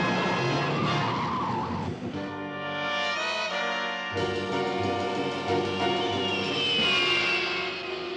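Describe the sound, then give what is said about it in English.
Batman's car, the Batmobile, races fast around corners and skids, its tires letting out long, loud, high-pitched squeals that rise and fall over a steady engine roar, with no one speaking. “How come Batman gets away with driving so fast, cutting around corners, going through lights?”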